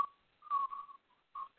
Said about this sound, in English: And I'm whistling North Carolina blue, or maybe, you know, North Carolina State red.